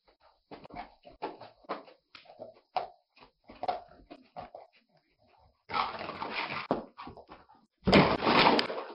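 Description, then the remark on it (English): A sleeping dog whimpers while dreaming, in a string of short, soft, broken yelps, followed by two louder, rougher bursts of muffled whining and huffing near the end, with no talking. “What was that dog dreaming about?”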